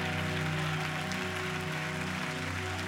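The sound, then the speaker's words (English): An audience claps their hands to give God glory after a prayer, in a dense, steady wash of applause that holds at an even level throughout, with sustained keyboard-like tones humming underneath. “If you believe what you just prayed, will you clap your hands, give God glory?”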